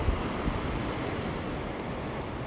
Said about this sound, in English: There's some pretty good waves coming in today. I suppose in the 6-foot range. Looks like root beer as they're crashing. And every once in a while, some darn good swells come in the 8 to 10 foot range, I suppose.